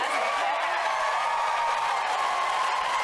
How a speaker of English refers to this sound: Big applause for Kamala Harris.